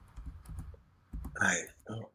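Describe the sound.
Rapid keyboard typing as someone looks something up, a series of quick clicks in uneven bursts, with a brief murmur of voices partway through.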